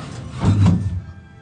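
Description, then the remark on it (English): An elevator door slides and thuds shut against a man standing in it who jams a 50 euro bill into the door, a single dull knock with a short rumbling tail that fades into quiet. “Now he's jamming the 50 euro bill into the door of the elevator.”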